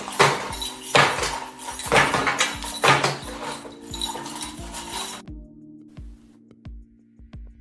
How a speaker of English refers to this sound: Always with the keys, though. That is so true, you know, because I remember back in school, like, you would always hear some sort of, like, because they had, like, these tags with the ID and 600 keys. It was always so many keys for no reason.